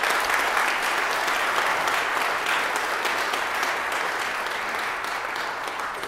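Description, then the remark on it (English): Sustained applause from a large group, a clap offering to the Lord for guest musicians, a dense steady patter of many hands clapping at even loudness for several seconds, with no voices standing out. “Clap offering to the Lord for our guests.”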